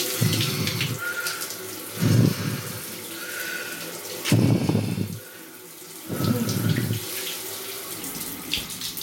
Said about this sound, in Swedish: som ska ge sig i kast med de iskalla duscharna